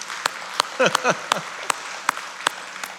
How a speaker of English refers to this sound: Yeah, you can applaud for that. That's awesome.